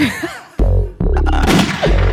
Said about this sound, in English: Oh my gosh. I love that gunshot. I like that.